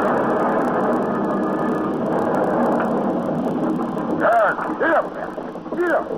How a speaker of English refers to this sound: On just that sort of night in 1768, a coach tops the rise of the hill, the Mail, bound east for Dover.